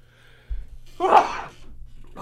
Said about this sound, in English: I'm about ready to sneeze.